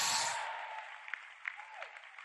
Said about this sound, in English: Come on, clap your hand and shout. Say yes.